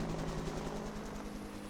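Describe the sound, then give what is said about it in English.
A helicopter flies steadily, its low droning engine hum layered with a faint rhythmic rotor chop that holds constant throughout. No one speaks. “Helicopter.”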